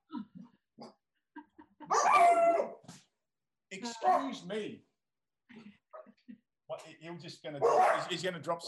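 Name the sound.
dog barking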